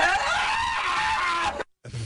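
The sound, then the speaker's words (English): A loud, high-pitched scream from the film Anchorman, held for about a second and a half, cut off abruptly by a brief silence, then resuming for a moment. No talking. “Scream with an S. Yeah, you're correct.”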